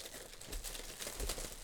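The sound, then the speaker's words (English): Steady crinkling and rustling of plastic wrapping and bubble wrap being pulled open while a package is unwrapped (a box, bubble wrap, a plastic bag, and a box inside), a continuous papery crackle with a few louder crunches, no one speaking. “Okay, so there's a box, and there's bubble wrap, and then there's a plastic bag, and then a box inside.”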